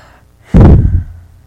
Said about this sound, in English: I have to stop breathing into this mic. I feel like Darth Vader or something.